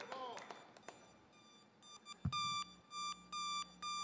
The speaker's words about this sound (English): There's an alarm that is sounding up in the house this morning.